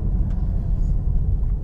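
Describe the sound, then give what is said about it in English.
Steady low-frequency engine and road rumble from a car merging onto a freeway, loud and continuous with no voices, like the cabin drone of a vehicle driving at speed. “All right, so let's get on the freeway here in just a second. Check for traffic.”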